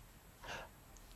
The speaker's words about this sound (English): Oh, what are you gasping about?